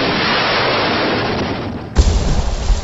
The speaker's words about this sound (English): The first 6 boats were on shore setting up their weapons when the gunship appeared. The last 2 boats, one carrying Ethan and Hope, the other with Katie, Aiden, Matt, and Ashley, were still heading towards the bank when the helicopter began shooting.